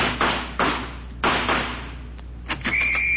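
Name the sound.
door flung open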